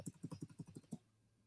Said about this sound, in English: It was like I'm hearing it right now. Hold on. Must be my keyboard. How about this? Can you hear it?